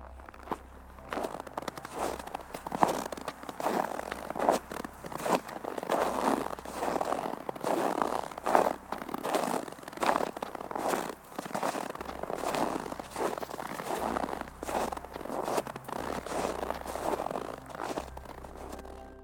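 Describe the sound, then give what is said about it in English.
A bag of cornstarch squeezed over and over as a Foley effect to imitate footsteps crunching through fresh snow, close and crisp, in a steady walking rhythm throughout with a faint low hum underneath and no talking. “I think there's something very satisfying about the crunch of fresh snow that you can create with a bag of corn flour or cornstarch.”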